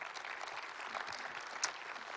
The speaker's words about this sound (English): Yeah, you can give that a round of applause.